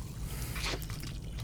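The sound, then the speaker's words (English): A short burst of Polar orange vanilla seltzer pouring and fizzing rises briefly in the middle, a soft hissy crackle of bubbles over a steady low hum, with no one speaking. “Ooh. You got the bubbly.”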